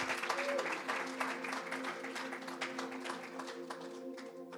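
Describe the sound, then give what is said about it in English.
An audience claps steadily to welcome a speaker as he comes up, a dense, even patter of many hands lasting several seconds, with a low sustained tone humming underneath. “Just, I know he's homegrown here, but we'll just give him a big clap and welcome.”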